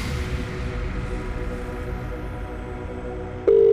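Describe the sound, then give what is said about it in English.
Several seconds of dense, low rumbling background sound with no talking, then a loud, steady telephone ring tone cuts in near the end: a radio contest call to a phone number selected at random, which has five rings to be answered. “That's our first ring down. Two rings.”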